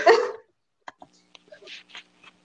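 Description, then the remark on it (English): A single loud cough bursts out at the start, followed by a few faint clicks and soft throat or mouth noises in otherwise quiet surroundings. “With the sound of coughing, you know that I'm back.”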